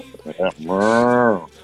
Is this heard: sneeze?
no